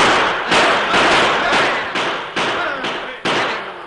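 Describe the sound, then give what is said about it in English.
A volley of gunfire meeting the first of several heavy wagons as it rounds a bend in bright moonlight: about eight loud, sharp shots in quick succession, roughly two per second, each ringing out with a brief echoing tail and no voices. “It was met by a volley of gunfire.”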